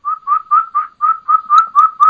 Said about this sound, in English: There she is. Okay, now those are the kikis coming back, but you can hear that hen just out there.